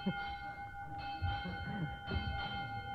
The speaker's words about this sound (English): All right, there goes the bell, children, and that means that school is over for today.